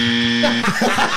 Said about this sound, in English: I'm going to get the wrong buzzer ready just here, just in case.